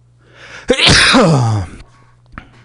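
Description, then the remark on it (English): A single loud sneeze bursts out with a sharp onset and a breathy, descending tail lasting about a second, followed by quiet background noise and a faint trailing sniff. “Bless you.”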